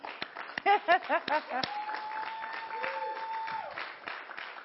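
An audience cheers and applauds to cheer the kids off, with scattered claps, a burst of rising whoops early on, and a long high whistle-like tone held through the middle before the noise thins out.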